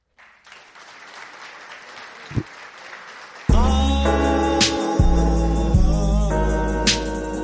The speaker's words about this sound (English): Clap. I guess clap for it, white people.